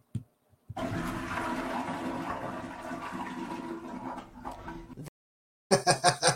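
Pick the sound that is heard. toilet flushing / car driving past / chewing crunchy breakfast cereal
toilet flushing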